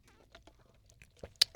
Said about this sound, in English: Let me take a sip of my iced coffee. I've been loving, sorry if my gulping was like really aggressive.